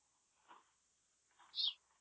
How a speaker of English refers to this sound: They added that noise. They throw in some crickets, a tumbleweed passes.